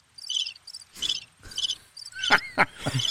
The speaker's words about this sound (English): playing with my little soundboard there. So it was crickets from that class.